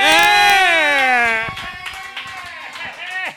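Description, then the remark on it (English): A loud, drawn-out cheering voice slides down in pitch, then a live show audience at the Creek in the Cave breaks into steady applause, many hands clapping in a dense patter that holds at moderate volume. “So clap loud, everybody!”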